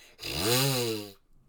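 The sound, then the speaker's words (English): A single buzzy, raspy vocal imitation of a chainsaw made by a person, about a second long and loud, its pitch rising then falling before cutting off abruptly. “I can make chainsaw noises.”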